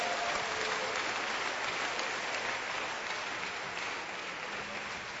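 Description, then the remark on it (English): An audience claps steadily together for the Lord, a dense, sustained wash of many hands applauding throughout, full, with no talking over it. “Give the Lord a wonderful clap of him.”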